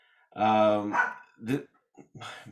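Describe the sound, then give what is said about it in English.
A dog barks loudly: one long, harsh bark followed by a few shorter, choppier yaps in quick succession. “My dog is really trying to wrap this up for me, so I'm going to fly through this.”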